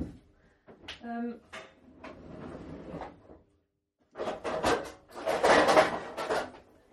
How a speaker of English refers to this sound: So we need a cake tin. I'd look in that drawer right where you were standing just there.